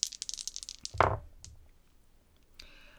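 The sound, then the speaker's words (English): Two dice being rolled for a brains roll in a tabletop game rattle with a quick run of bright clicks, then land with a single solid clack, showing two 5s, followed by a faint tick and a soft scraping rustle. No one speaks. “How many dice do I get?”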